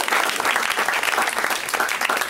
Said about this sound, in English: Yeah. This person is still clapping. Third claps. Third round of applause from this person.